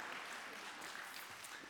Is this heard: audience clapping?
yes